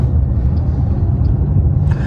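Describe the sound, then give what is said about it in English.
A steady, heavy engine rumble from a four-person side-by-side Razor UTV idles and creeps along as it is backed partly into the road toward a car, low and continuous throughout, with a brief higher-pitched rattle near the end and no voices. “side-by-side, four-person razor. The guy was backing it in.”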